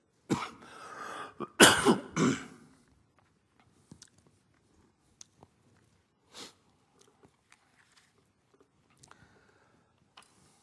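Loud throat clearing and a rough cough in the first few seconds, followed by near-silence with only a few faint clicks and a brief breath.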